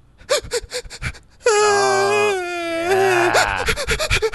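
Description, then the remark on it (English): A voice imitates a distressed young child crying: a few short, hiccuping sobs, then a long, loud, wavering wail that rises and falls in pitch before breaking into choppy sobs. “He's just, he's doing one of these cries.”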